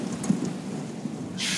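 A thunderstorm: low, rolling thunder rumbles beneath a steady hiss of rain, with a brighter wash of rain noise swelling near the end. No voices are present.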